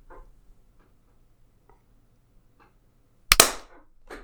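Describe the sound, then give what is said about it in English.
A single sharp hand clap, made to sync a recording, rings out after a few seconds of near silence, a bright, loud crack with a brief decaying tail, preceded only by faint soft rustles. “So let's do another time that is clap.”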